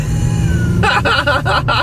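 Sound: car interior driving noise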